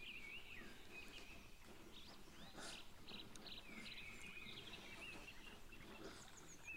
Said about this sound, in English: And now listen to the birds.